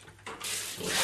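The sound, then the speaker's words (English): Water gushes from a tap, a steady hiss that swells louder within the first half-second and keeps running strong, with no voices over it. “Now, there's our water.”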